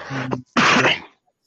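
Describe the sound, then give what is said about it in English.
A single loud sneeze: a short voiced intake followed by a sharp, breathy burst, then silence. No one speaks. “Bless you over Bless there, you, big boss.”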